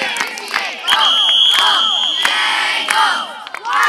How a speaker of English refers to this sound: That whistle means it is the end of the Swedish relays, and blue is victorious.